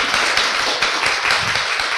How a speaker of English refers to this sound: We've got three lovely speakers. Can we have some applause for our speakers, please?